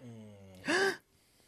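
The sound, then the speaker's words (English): A person makes a single quick, sharp gasping breath, imitating a yawn, fairly loud, preceded by a low steady hum and followed by near silence. “It's more like taking a quick breath.”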